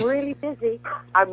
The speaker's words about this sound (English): Do you hear my dog? Do you hear my dog? Yes. Barking? Yeah. That's Harmony. That is Harmony.